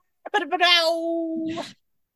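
A single drawn-out meow from a cat sitting on a person's lap in Brooklyn, fairly loud, opening with a few short chirps before holding one steady, whiny pitch for about a second and then cutting off.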